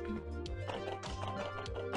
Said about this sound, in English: As you hear footsteps coming up the walkway.